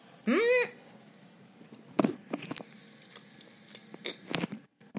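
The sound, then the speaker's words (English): Someone chews and crunches hard candy, with sharp irregular crunches scattered over a few seconds, after a brief rising vocal hum at the start. “Had to chew that one fast.”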